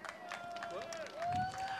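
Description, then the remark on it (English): An audience applauds itself at a solidarity event broadcast live on Facebook, a dense, continuous patter of clapping, with a thin sustained whistle-like tone gliding and rising above it, growing slightly louder toward the end. “Vous pouvez tous vous applaudir, s'il vous plaît.”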